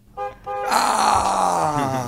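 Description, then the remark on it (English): A buzzy horn honks: two short toots, then one long, loud, sustained blare with a rough, raspy tone that dips slightly in pitch toward the end. “I'm going to give y'all a minute apiece, but I want my horn to honk.”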